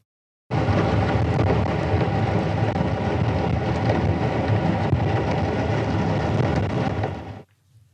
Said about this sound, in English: This is not a whale. This is the sound that's disrupting. This is a commercial ship from an underwater microphone.